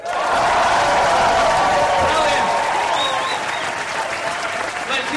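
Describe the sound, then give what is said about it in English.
A large crowd bursts into sustained practice applause with whoops and cheers, loud and dense throughout, a steady roar of clapping that barely fades across the whole stretch. “we're going to do a bit of practice applause and cheering for when the acts come on”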